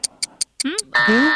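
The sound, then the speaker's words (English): A few quick ticks lead into a loud, harsh game show time-up buzzer that holds for about half a second, with a voice calling out over it. “Do after the buzzer, yeah?”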